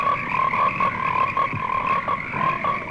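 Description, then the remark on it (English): A dense chorus of frogs croaks continuously, many overlapping calls forming a steady, pulsing drone with no one speaking, in a trailer for the American International Pictures film Frogs. “Frogs lay hundreds of millions of eggs every year. What would happen if they all hatched?”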